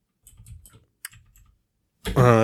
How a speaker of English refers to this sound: Now my keyboard is going to make a lot of noise because it's loud.